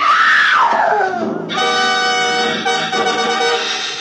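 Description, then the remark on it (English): An old woman screams loudly at a two-story house on a sun-baked cliff 200 feet above the ocean, her shrill voice sliding downward before holding a long, strained, wavering cry for about four seconds, with no talking. “Inside, I found an old woman whom I figured to be my client leaning against the half-open kitchen door, sobbing and clenching at the gingham apron she wore like it would keep her from screaming again.”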